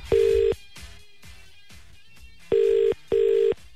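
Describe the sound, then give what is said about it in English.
A telephone ringing out: steady ringback tones in a double-burst pattern, one burst followed after a pause by a close pair, clear and fairly loud with faint soft pulses between and no talking. It is radio station Mix 94.5 calling the winner of its Where in the World contest with Blueprint Homes. “I'm making that phone call right now.”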